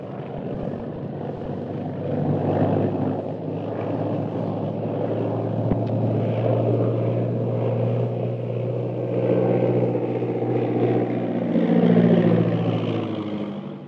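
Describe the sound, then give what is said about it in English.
A propeller plane roars steadily in from the hills, its engine drone loud and continuous as it circles and descends to land, swelling slightly toward the end. No voices are heard. “the plane piloted by Derek Bluger roars in from the hills”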